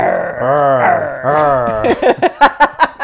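A lion roars twice in long, rumbling, throaty bursts in a film studio logo played at the start of a movie, then trails off into a quick series of short rhythmic grunts, loud and with no other sounds.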